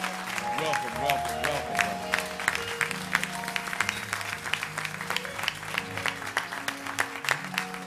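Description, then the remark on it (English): A church audience at a fall revival at Cade Chapel applauds steadily for about eight seconds to welcome the guest speaker, a dense, even patter of clapping. Sustained organ-like chords play underneath, and a voice calls out near the start. “Come on, let's hear it for him, y'all.”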